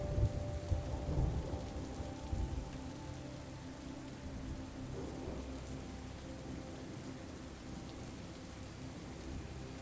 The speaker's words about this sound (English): Beyond the circle of armchairs, a large window offers a breathtaking view of the storm outside. Raindrops splatter against the glass, and the trees sway in the wind, their leaves rustling in a symphony of nature's music.